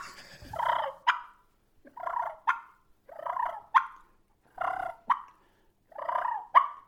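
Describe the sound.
An imitated turkey call, clear: five rolling, contented feeding purrs, each ending in a sharp cluck, repeated at a steady pace with short silences between them.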